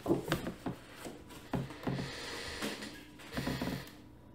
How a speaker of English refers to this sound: Sorry, I got squeaky chair. It's all I have available, and I'm sorry if it's bothersome. It is to me, but we do what we can with what we have, where we are, when we're there.